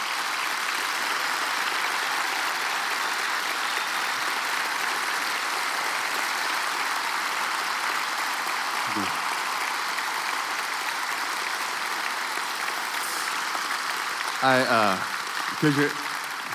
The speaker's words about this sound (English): It was a faux pas. I didn't set it up well, but the way we do it is we clap and cheer after we give them the socks. So you guys jump the gun.